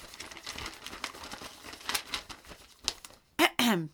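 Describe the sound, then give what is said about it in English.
Crisp paper rustling and crinkling as a letter found in a bag is unfolded, a few seconds of irregular crackles, followed by a brief voice at the end. “Oh, what's this in my bag? A letter.”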